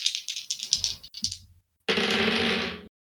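Dice rattle and clatter in a quick burst of hard clicks, then after a brief pause a sustained, bright rolling rumble lasts about a second before stopping abruptly. The dice are rolled for a perception check and land on a 4 and a 5.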